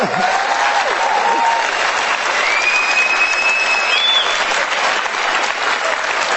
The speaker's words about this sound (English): Could we praise God for about 5 seconds on how good He's been for us? Just hand clap.